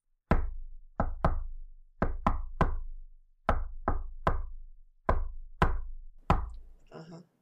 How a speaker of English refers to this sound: I looked up how to say crane in Morse code. Could I knock that and see if it works?